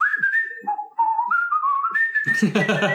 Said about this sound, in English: I just want to whistle down the corridor.